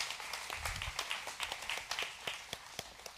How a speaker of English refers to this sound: Can you all welcome him with a big round of applause?